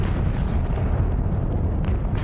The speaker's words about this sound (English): and high-pitched screams, the sound of banshees all around me, as hell erupted in fire, brimstone, smoke, heat and light, as shell after shell landed. It was worse than I could ever have imagined hell to be. I gasped at the magnitude of the barrage.